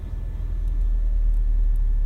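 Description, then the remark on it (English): A steady low rumble of a car engine idling, continuous and even throughout, with a faint high whine on top and no voices. “Part of it's because I'm idling.”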